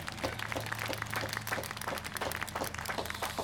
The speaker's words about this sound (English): Give yourselves a clap and let's thank all those who came.